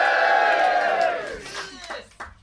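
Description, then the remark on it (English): A live audience at a recording, asked to make themselves heard, roars with shouting and cheering, loud at first and then tapering off, with a few scattered whoops and voices trailing into quieter bursts. “This is a live pre-recorded phone-in, Skype-in podcast, but also shout-in, because we got people right in front of us here in the audience. Make yourselves heard.”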